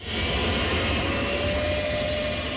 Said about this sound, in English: That's not a jet plane, but a gas turbine-powered 1963 Chrysler turbine car. Only three running examples of the bronze two-doors are in existence, and one is now on display, albeit quietly,